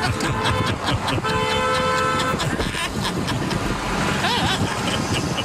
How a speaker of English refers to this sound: He's trying to pull over now. But to pull over, he's got to honk at everybody.